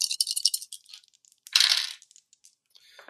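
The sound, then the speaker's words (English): Dice clatter and rattle across a hard surface in two bursts during a tabletop role-playing game, a longer jumble at the start and another sharp tumble a second later, trailing off into scattered light clicks. “All right, let me get my dice.”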